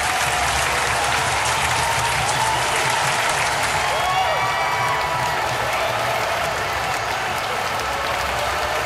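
Sustained audience applause at Vermont Comic Con 2015 fills the whole stretch, a dense steady wash of clapping with a few faint cheers and crowd murmurs mixed in, loud and continuous throughout.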